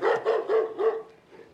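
A dog barks four times in quick, steady succession, loud, followed by a softer trailing yelp as the barking fades out.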